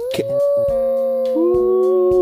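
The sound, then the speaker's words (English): A person imitates a whale call with a long, sustained, moaning tone that wavers and slides slightly in pitch, fairly loud, with no talking around it. “What noise does a whale make, friends?”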